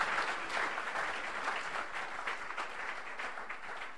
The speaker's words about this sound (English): I thought you would give a clap of praise unto the Lord for that.